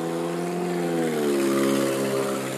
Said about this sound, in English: That nigga car sound like he need a muffler.